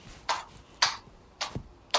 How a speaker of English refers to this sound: Hear the sword banging?